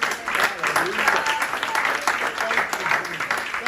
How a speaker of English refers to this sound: Clap your hands again.